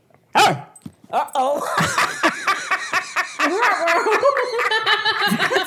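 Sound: dogs barking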